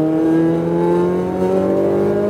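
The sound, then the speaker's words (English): A race car engine on a track rises steadily in pitch as the driver gives more throttle, a loud, continuous roar with harmonic whine climbing over the whole stretch and no voices. “A little bit of throttle. More throttle.”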